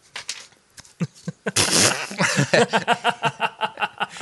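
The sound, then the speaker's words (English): Loud hand-made fart noises: a few scattered squelches, then a long sputtering blast and a quick rhythmic run of wet, squeaky puffs. No one talks. “does fart noises with his hands.”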